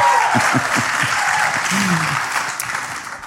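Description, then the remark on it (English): An audience applauds steadily for a few seconds, with dense, even clapping at a fairly loud level and a few faint voices mixed in underneath. “So, you know, just not sure which what the crowd is here, but that's, I got one clap. There we go, come on.”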